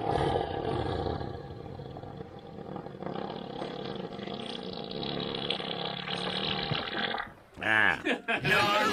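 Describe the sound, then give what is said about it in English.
A long, loud, low rumbling fart from one of three elephants at a watering hole, whipping its tail, heard from the other side of the watering hole, blustering steadily for about seven seconds before cutting off, followed by a brief burst of human voices. “You can tell which one's farting because it's whipping its tail.”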